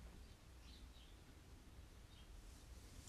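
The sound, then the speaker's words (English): A few bird chirps come in short clusters over a steady soft hiss of light rain in the early morning, with no one talking. “Birds are still chirping.”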